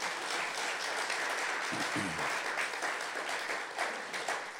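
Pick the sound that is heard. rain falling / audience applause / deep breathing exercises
audience applause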